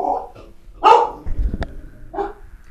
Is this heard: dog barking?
yes